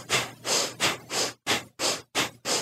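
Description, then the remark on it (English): Quick, evenly paced breaths drawn in and pushed out through the nose in a breathing exercise, equal inhale and exhale, about eight airy bursts in a steady rhythm, clear with no talking. “Then the breathing goes through the nose, and it's an equal exhale and inhale.”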